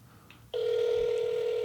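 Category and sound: signal or alarm, phone call ringing tone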